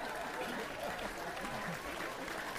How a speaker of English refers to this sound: I'm waiting for the applause to stop.